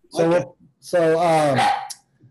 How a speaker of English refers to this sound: So got a dog going crazy in the background. All right, that's what we love about live TV.